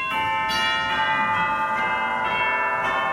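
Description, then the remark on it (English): Cathedral chimes, part of an organ's room of percussion instruments, ring out in a steady sequence of struck tones, each strike blooming into long, shimmering overtones that overlap and sustain, fairly loud with no voices. “Cathedral chimes,”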